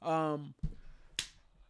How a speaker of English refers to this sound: Bro, you can't be doing that in the middle of the... I'm clapping. Doing jumping jacks.